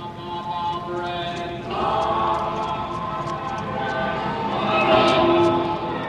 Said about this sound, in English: following those cars is the sound perspective of each of these individual radios